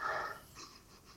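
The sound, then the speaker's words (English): A breathy sniff at the drip tip of a freshly re-wicked, juiced-up vape held up to the nose, smelling of custard: one strong inhale through the nose, then a softer second sniff a moment later. No one is talking. “Right, go on then, give it a sniff.”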